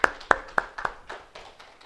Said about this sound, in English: So let's give him a big round of applause as he comes.